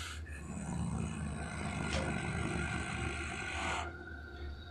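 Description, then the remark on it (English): A deep, loud, sustained beastly roar of a gigantic wolf rumbles for about four seconds with a gritty, rasping texture as it rampages through a forest, then cuts off abruptly; no one speaks. “And then suddenly, this gigantic wolf twice your size, rampages through the forest with blood in its mouth and rage in its eyes as it stares cold at you.”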